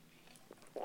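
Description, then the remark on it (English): A quick sip of LaCroix sparkling water from a can, with a few faint wet mouth clicks followed by a short slurping gulp at the end. No one speaks. “I'm taking a sip of LaCroix.”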